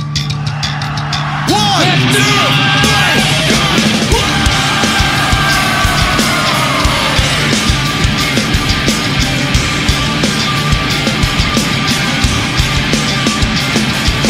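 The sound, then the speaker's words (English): A live concert audience screams and yells in a loud, sustained roar, dense and continuous after a brief quieter opening, with high-pitched whoops rising above the wall of noise. “Are you ready to scream?”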